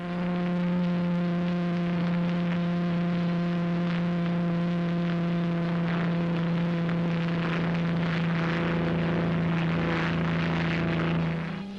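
Sir Malcolm Campbell's single-engine, light-hulled speedboat Bluebird roars across Lake Maggiore on a water speed record run, its engine a loud, steady, buzzing drone held for the whole stretch, with a rushing wash of noise swelling near the end.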